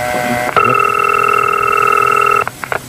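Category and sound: signal or alarm, telephone ringing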